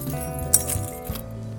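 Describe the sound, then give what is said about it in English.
A brief metallic jangle as thrown keys, not caught, land and clink once, fairly sharp, over a steady low humming background. “And you can't even catch your keys if I throw them at you.”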